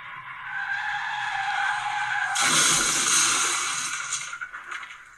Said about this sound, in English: Okay, so I'm looking at a car. What you see on screen is a dash cam of a vehicle going full speed over a hill.